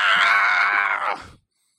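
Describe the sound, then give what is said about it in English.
Several voices scream together in one loud, sustained burst lasting just over a second, before it breaks off abruptly into silence. “Yeah, they're supposed to scream at the same time, see what it sounds like.”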